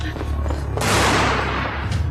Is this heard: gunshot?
yes